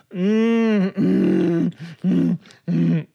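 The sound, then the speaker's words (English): Loud, exaggerated gross vocal noises made while sipping and gulping a beer, Josef Brau Summer Brew top-fermented lager from Trader Joe's: a long low groan followed by three shorter guttural grunts, each a deep voiced burst with brief pauses between, and no words spoken. “I'm going to take a sip of this delicious, funky beer.”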